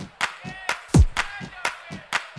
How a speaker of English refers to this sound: I wonder if everybody can put their hands together for me like this one.